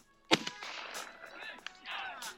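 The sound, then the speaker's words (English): A single loud hunting gunshot at a big buck deer cracks out suddenly, followed by a rolling, fading echo and some softer rustling noises afterward. “Boom!”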